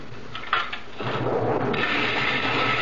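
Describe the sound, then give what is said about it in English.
A motorized whirring starts after a second of quieter clatter and then runs steadily, a gritty churning as a blender mixes granite sand with very thin lacquer, fairly loud. “I mix in very thin lacquer, like this, in a blender.”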